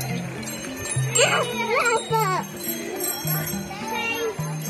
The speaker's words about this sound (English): Now, that sound you just heard is a bike bus. And a bike bus is a group of adults, children, cycling, scooting, or wheeling along a route together, along a road that would otherwise be too dangerous.